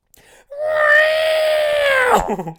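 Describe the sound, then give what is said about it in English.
A voice imitates the R2-D2 robot droid screaming: one loud, sustained, steady-pitched wail that swoops sharply downward at the end, followed by a few brief choppy sputters. “Don't hear the hear the R2-D2 scream.”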